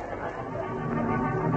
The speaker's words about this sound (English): There was a discordant hum of human voices.